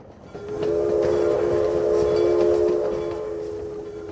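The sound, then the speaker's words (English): A train rumbles along the tracks while a loud, steady horn blast sounds for a few seconds, then fades back into the continuing rolling noise of the railcars. “Ponzi hopped on a train headed back to the U.S.”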